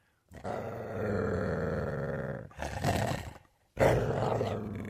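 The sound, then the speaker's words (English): A Jack Russell dog growls and snarls in three loud, rough bursts: a long sustained growl, then two shorter snarling outbursts after brief pauses, with no voices. “He has a Jack Russell dog, which he loves, but it hates me. It barks and snarls at me.”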